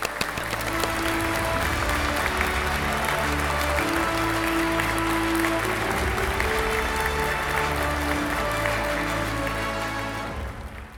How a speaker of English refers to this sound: Yeah, I mean, I just clapped, but I will add some more applause. Thank you. Yeah, just one person clapping, I think, is actually worse than nobody clapping.